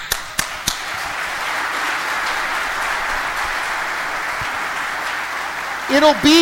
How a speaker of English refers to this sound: And I want a major round of applause. The women's group, for the first time in 2 years, is absolutely sold out and full.